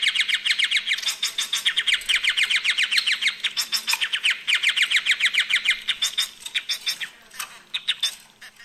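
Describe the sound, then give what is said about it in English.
Society finches chatter nonstop, a busy stream of rapid, high chirps and scratchy squawks from more than one bird, with no talking over them. “It's not a vampire finch, but it's called a society finch.”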